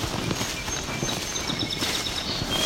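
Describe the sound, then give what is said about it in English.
A song sparrow sings a series of high, thin notes and trills, fairly faint, in juniper flats, over a steady background of low thudding hoof-like footsteps. “There's our song sparrow again.”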